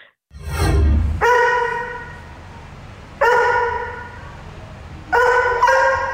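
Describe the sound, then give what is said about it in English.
A dog lets out a few drawn-out, tonal barks with long pauses between them, fairly loud. The final bark cracks partway through, its pitch jumping as the voice breaks. “The dog going through puberty. A little bit of a voice break at the end there.”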